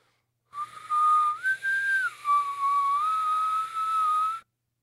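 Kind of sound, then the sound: human body sound, whistling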